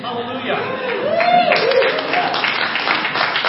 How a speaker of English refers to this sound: And all the people clapping don't even really like me.